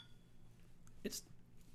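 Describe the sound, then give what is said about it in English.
A single quick clink of beers, a strong Shorts Chief Hopper double IPA, knocked together in a toast, short and fairly soft, over a low steady hum with no talking. “Let's open these up. Well, cheers.”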